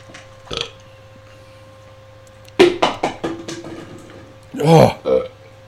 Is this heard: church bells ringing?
no